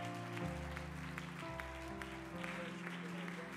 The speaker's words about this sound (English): Could you receive them with a warm hand clap of welcome in Jesus' name?